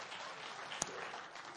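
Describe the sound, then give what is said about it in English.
Thin, scattered audience applause for news of a pastor's newborn son, a steady soft patter of many hands with one sharper clap standing out midway; subdued and brief, with no voices. “It's kind of a weak applause for having a kid.”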